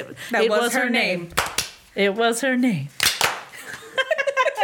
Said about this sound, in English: People are gonna hate us for clapping into the mic.